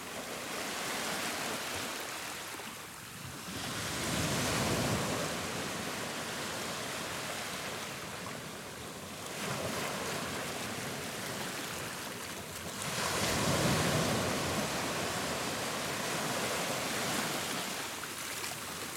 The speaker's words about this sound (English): And then a week later, there's like 20-foot waves washing across the road and a deafening roar.